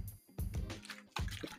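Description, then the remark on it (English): Wet gulping sounds as someone takes a drink of water, with three distinct swallow-like bursts spaced through a short, quiet moment and no talking. “Sorry, I needed some water just then.”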